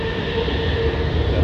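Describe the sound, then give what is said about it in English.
Steady rumbling inside a moving train carriage nearing Bentley, near Alton, with low-frequency engine and wheel drone and faint high tonal hums, continuous and fairly loud, no talking. “We're on another train.”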